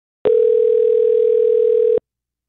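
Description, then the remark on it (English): A steady telephone dial tone, heard while placing a call, hums at a single even pitch for nearly two seconds, loud, then cuts off abruptly. No voices accompany it. “Can we call him?”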